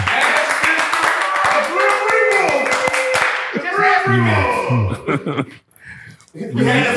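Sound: people clapping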